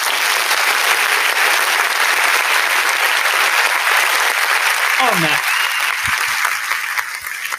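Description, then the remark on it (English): A crowd applauds in thanks to football players, with steady, dense clapping that stays loud throughout, with brief shouts and a voice rising above it near the end as the clapping begins to thin. “We need a round of applause.”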